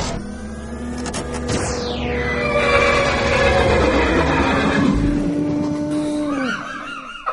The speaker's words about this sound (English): Horse of Terror!